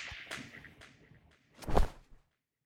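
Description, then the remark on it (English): A sharp whip crack bursts out loud after a few quick swishing whooshes, then fades into silence with no one speaking. “quickly, everyone throws a dagger, throws whatever, hits him with a whip, shoots him with an arrow, and when you do, it just cuts off, and he just falls limp again.”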